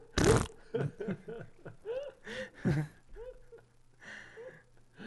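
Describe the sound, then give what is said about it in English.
A loud, abrupt fart bursts out right at the start, brief, from a man just kicked on his back in a leg sweep, followed by a series of strained vocal sounds and voices. “Dude lets out a wild fart after getting kicked on his back.”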